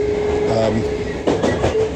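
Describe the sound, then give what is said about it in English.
Steady low rumble of a moving train heard from inside the carriage, with rattling, clattering bursts and a faint squealing tone running through the continuous noise. “Train is all wiggly and bouncy.”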